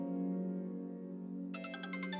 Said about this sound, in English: Anita looked at the caller ID and finally decided to pick up the call.